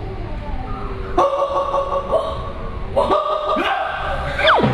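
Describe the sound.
In a singing lesson, a person imitates a fierce dog barking as a dog-bark breathing exercise for chest expansion, with two loud, drawn-out bark-like vocal bursts, about two seconds apart, over a steady low background murmur.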